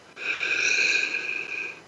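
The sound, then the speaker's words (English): One long, steady deep breath during a guided breathing exercise, lasting nearly two seconds, a breathy hiss with a faint whistling edge that swells quickly, holds evenly, then fades out. No talking. “This kind of breathing helps bring you present.”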